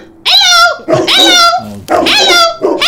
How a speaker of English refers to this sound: Look, he's saying hello. The dog is saying hello.